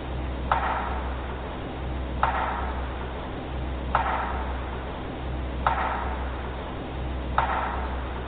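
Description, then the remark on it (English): A sharp, loud wooden knock strikes a tree five times at steady intervals of under two seconds, each a single crack with a short ringing tail over a constant low background hum; the knock is a looped recording about 8 seconds long. “So the first sound is just a very, it's almost a power strike, this loud wood knock.”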